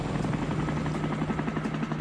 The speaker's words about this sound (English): We're riding in a helicopter!